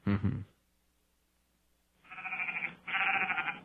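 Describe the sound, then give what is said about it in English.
A sound effect: a brief low thump opens, then after a short pause two long, wavering sheep bleats follow back to back, loud, with no talking. “That's a sheep.”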